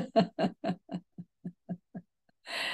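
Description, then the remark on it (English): A dog snoring loudly in a quick series of nine or so snorting, grunting pulses, the first few heavier and the rest softer, ending with a long breathy rush of air. “I'm listening to some loud snoring over here, the dog.”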